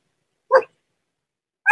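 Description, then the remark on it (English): A dog barks twice, two short sharp woofs separated by about a second of silence, moderately loud. “What bark is that? That's not the horny bark.”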